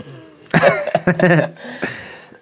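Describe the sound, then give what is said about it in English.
Several loud, harsh coughs burst out in quick succession, a rough, throaty fit lasting a couple of seconds with no talking. “Jeez, your cough is like so loud.”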